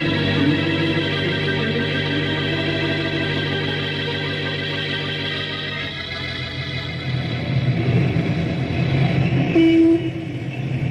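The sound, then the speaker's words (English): Three ranger cars weave quickly through busy traffic amid a steady wall of loud, sustained blaring horns, with rumbling engine noise swelling toward the end. No one speaks. “Little do the citizens of Knotty Pine realize why three ranger cars weave quickly through the traffic.”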